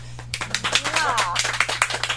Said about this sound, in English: Happy birthday. Everybody clap.